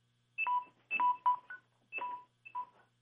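A microwave oven beeps in about five short, bright electronic tones at an uneven pace, fairly loud over a faint steady hum, with no one speaking.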